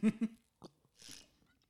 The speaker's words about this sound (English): Nice wee simultaneous sip there from the boys.